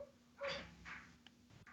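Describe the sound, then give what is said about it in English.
A dog barks twice in quick succession, faint, over a low steady hum, with a soft knock near the end. “Can you hear the barking, though?”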